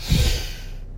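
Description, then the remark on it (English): A forceful, rushing breath in and out through the nose during a breathing exercise, strongest at the start and then trailing off into a softer airy hiss. No talking. “The emphasis of this breathing technique is a powerful inhalation through the nose and a powerful exhalation through the nose.”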